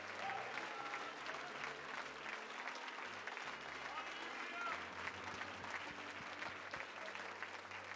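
An audience claps to the Lord, loudly and continuously, a dense, steady wash of applause with crowd noise and a few low thumps underneath, sustained for the whole stretch.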